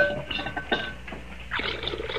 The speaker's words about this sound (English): pour some water into that basin for me, will you, man? I want to wash my hands.